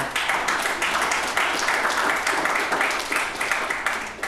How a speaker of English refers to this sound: Yes, let that applause wash over you, because that is, I'm so happy to hear that out of the leaders of our La Crosse community.